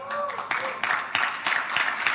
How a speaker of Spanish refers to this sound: Yo que usted daba un mejor aplauso que ese, vamos.